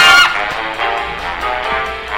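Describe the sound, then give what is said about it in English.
A loud, harsh alarm blares continuously from a radio, set off by a string on the floor connected to it. It is a buzzy honking tone rich in harmonics that starts at full force and holds steady with slight pulsing throughout, with no voices. “I think I tripped some kind of alarm.”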